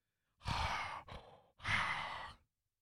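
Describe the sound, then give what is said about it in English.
A voice imitates heavy breathing into a phone: three loud, breathy exhalations and inhalations in a slow rhythm, the middle one shorter and weaker, with no words spoken. “Then he started breathing in the phone and stuff.”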